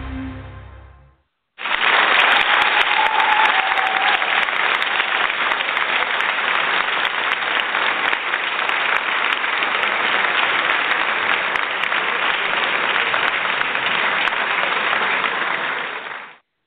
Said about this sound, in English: Well, that applause is for our guest today who just joined us. I'm so excited.